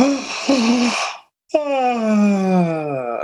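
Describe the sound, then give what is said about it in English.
A person yawns aloud, starting with a breathy inhale, a short pause, then a long voiced exhale that slides downward in pitch, fairly loud with no talking. “The only time you actually take a deep breath is when you yawn.”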